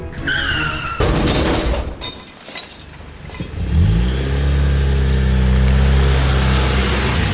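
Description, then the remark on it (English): A car's tires squeal as it speeds backwards, then a loud crash of breaking, clattering metal as it bursts through a metal gate, leaving the gate hanging off its hinges, followed by a powerful engine roaring and revving. “As the car zoomed backwards towards the gate, Jenny threw her arm over the back of Kat's seat and closed her eyes, bracing for the impact.”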